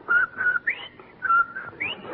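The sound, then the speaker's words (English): Someone whistles a bouncy little jingle tune, a short run of clear sustained notes with rising slides between them, fairly loud with no talking. “I saw him out on the porch and he was whistling and singing. Like this.”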